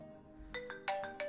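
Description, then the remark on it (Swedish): A mobile phone ringtone chimes in a quick melodic pattern of bright electronic tones, several notes rising in succession, fairly clear and alone without voices. The phone is ringing in a handbag and is not answered. “Mobilen ringde, men Sofia tog inte upp den i väskan.”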